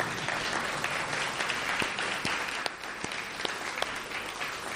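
A church group applauds steadily for several seconds for a member who has just read Bible verses from Luke chapter 3, a dense patter of many hands clapping at an even, sustained loudness with no voices rising above it.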